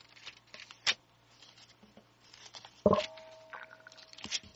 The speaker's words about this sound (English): We're turning pages here, I tell you. I don't know if you guys can hear it, but we are snapping them.